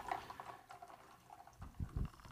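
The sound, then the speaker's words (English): Liquid pours steadily into a glass, a soft splashing trickle that ends with a couple of deeper glugs as it fills; no one speaks. “There you go. That's a nice pour.”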